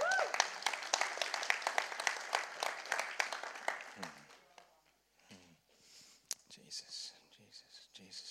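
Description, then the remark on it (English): A crowd breaks into dense, steady applause, many hands clapping loudly for about four seconds before it thins out and fades, leaving scattered claps and faint voices. “Let's give the Father a round of applause for what he's going to do.”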